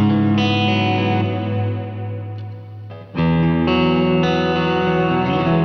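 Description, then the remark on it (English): A loud electric guitar played through a Line 6 Litigator amp model rings out sustained, distorted chords drenched in a big, washy reverb, with one chord change about halfway through and no voices. “So anyway, I added a big reverb.”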